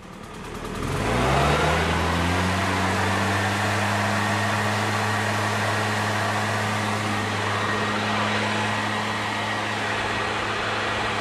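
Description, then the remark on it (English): A leaf blower's small engine sputters to life and climbs in pitch over the first second or two, then holds a loud, steady whining drone with a broad rush of air. “There's absolutely a podcast of this gentleman and his leaf blower.”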